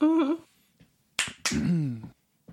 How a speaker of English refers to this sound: Uh-oh, he's getting excited. I can tell when he starts clapping.